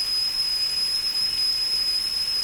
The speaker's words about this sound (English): A kettle whistled merrily from a hook over the blaze.